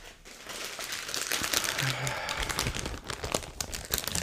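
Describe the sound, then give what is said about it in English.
A piece of paper being unfolded and crinkled, a continuous dry rustling and crackling that swells and flutters for several seconds with sharper crisp bursts near the end. “What have we got here? It's a piece of paper.”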